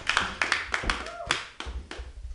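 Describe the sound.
A short round of applause: sharp, irregular handclaps from a small audience, fairly loud and uneven in rhythm, with a brief voiced cheer partway through.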